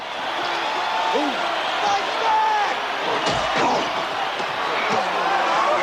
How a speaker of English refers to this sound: You know, for this small of a crowd, they're making a hell of a noise. Making a hell of a noise.